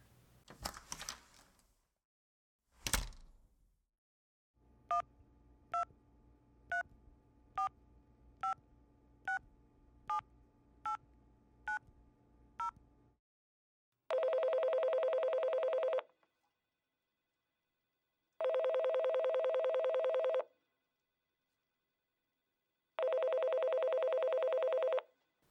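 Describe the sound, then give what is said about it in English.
A phone is picked up, then a quick series of about nine electronic dialing beeps plays over a faint line hum, followed by three long, evenly spaced ringback tones. “Just need to make a really quick phone call.”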